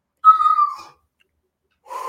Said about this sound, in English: And I always go into this breathing before we start.